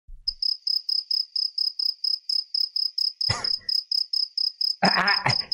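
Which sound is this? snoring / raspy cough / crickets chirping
crickets chirping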